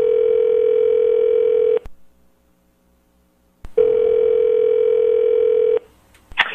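A home telephone rings twice, each steady electronic tone lasting about two seconds with a silent pause between, followed by a brief click as if the receiver is picked up. No one speaks.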